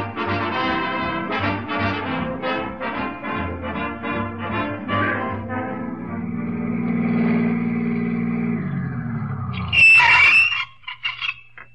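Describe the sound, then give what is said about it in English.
A taxi's engine rumbles and revs as it drives along, then slows, and a sharp, loud screech of brakes that need fixing brings it to a halt near the end. “get them brakes fixed. How much, driver?”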